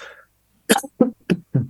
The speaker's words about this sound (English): Pardon my cough. No, that is the Canadian plume kicking in.